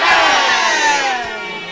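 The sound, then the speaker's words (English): A loud, sustained shout rises from an audience in response, several voices blending into one ringing cry that holds for nearly two seconds before tapering slightly, with no clear words. “One of them is not saying amen yet. It's only one of them that shouted.”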